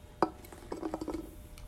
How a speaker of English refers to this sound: One sec. I'm going to open another beer